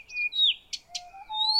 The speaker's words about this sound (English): We were looking for nightingales, and there weren't any in one place in the middle of Finland. We found this other bird that I'd always heard was a great singer to sing along with, to play along with, these Blythe's reed warblers.